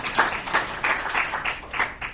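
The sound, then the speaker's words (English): An audience at the Dryden Theater applauds the theater's projection staff, a steady wash of clapping with recurring brighter surges at a moderate level, no voices heard over it. “So give these guys a big round of applause while I drink for the good work they do here in the Dryden Theater.”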